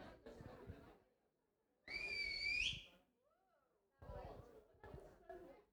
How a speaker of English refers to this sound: Spot the Welsh person in the room. It was like the rugby whistle.